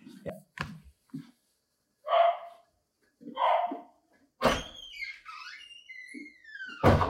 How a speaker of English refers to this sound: Sorry, my dog is barking. I don't know if you can hear that.